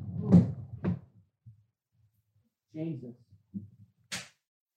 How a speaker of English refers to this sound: Just had a spillage. He's just knocked his coffee all over his computer. Right. All over the floor.